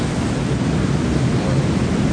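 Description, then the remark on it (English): A steady, dense roar of a waterfall in the jungle at Puerto Vallarta pours on without pause: a loud, broad hiss of crashing water with no voices. “That's I got to see the waterfall there in Puerto Vallarta too.”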